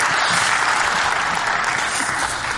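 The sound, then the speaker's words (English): A crowd of people claps steadily, a dense, continuous wash of applause that holds at an even, fairly loud level throughout without fading. “You kind of wanted to clap.”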